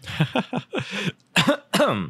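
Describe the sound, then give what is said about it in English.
A hacking coughing fit from something caught in the back of the throat: a quick run of short, raspy coughs, then a brief pause and two louder, harsher coughs with a throaty, strained edge. “But got a pretty bad cough myself, to be honest.”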